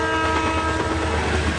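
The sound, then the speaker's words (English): A loud train rumbles by with its horn blaring in a steady, sustained tone over the heavy rolling noise of the cars. “If you think trains will stop if they see a car on the tracks, you're right, they will.”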